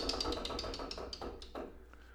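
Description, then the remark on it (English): A game wheel spins with a rapid run of sharp plastic clicks that gradually spread apart as it slows, the ticking trailing off toward the end. “Speaking of which, we got this fucking wheel here. Why don't you give it a little spin?”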